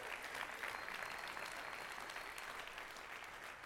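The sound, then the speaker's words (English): A church audience applauds the Lord for a $50,000 pledge toward a church building project, a dense, even wash of many hands clapping at a moderate level that holds throughout without any voices standing out. “So let's give the Lord a round of applause for that.”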